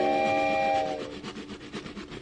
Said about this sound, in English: And now let's get back to that train. It's 6 months later, and on the train making its way across Texas are a man and wife, newlyweds